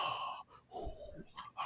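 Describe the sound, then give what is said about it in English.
A voice imitates creepy, heavy breathing of someone in a film shot: a few drawn-out, raspy breaths in and out, with short pauses between them and no talking. “And in the shot, someone's breathing.”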